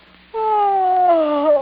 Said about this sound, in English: Trixie, rousing herself with an effort, sits up in bed and yawns loudly.